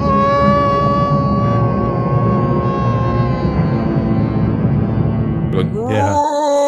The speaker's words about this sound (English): One of those great Donald Sutherland screams. He's got a few of those.